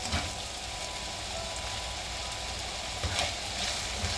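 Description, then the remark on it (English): A steady sizzle of corned beef hash, meat and potatoes seasoned with salt, pepper and spices, frying in a pan, with a dense crackling hiss throughout and a few brief louder pops. No one speaks. “Okay, now you hear the sizzle sizzle.”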